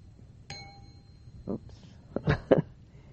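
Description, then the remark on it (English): A single meditation bell is struck once and its clear, tonal ring sustains and slowly fades over a few seconds, with soft voice-like sounds or rustles briefly over the lingering tone. “Which emanates from the ringing of the bell and continues on.”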